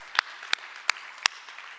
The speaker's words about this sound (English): And we want to welcome those who are also online. Thank you for being a part of South Coast Christian Day. Come on, give our online audience a big applause. Come on.